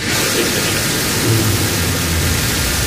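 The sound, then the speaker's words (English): A Blue Origin rocket launch carrying Jeff Bezos and its first human crew: a loud, steady wall of hissing, crackling noise over a deep rumbling low end, unbroken for the whole stretch with no voices. “Jeff Bezos and crew now blasting off.”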